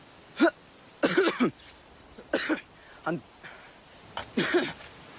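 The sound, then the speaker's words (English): A coughing fit: bursts of harsh, rough coughs come in clusters over several seconds, some doubled or tripled in quick succession, fairly loud with short pauses between. “Her latest coughing fit really raised some concerns.”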